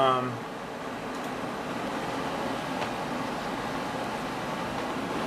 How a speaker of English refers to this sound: I'm not sure how loud the air conditioner is on here, but I hope you'll be able to hear this.